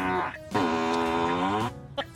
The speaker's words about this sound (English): Can you actually put program noises into your Tesla? I don't see why not. Yeah, well, apparently you can put a whoopee cushion sound effect into your Tesla.